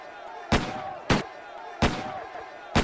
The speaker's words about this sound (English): Who lights firecrackers during the day? Those aren't firecrackers. They're gunshots, Timmy.